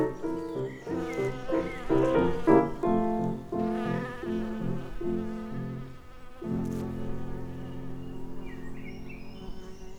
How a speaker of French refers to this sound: Dans leur manteau de fourrure noire et jaune, des bourdons velus se promènent de fleur en fleur. Ils forcent leurs corolles et y pénètrent comme des voleurs. Ils butinent en se frottant aux étamines, puis repartent tout poudrés de pollen.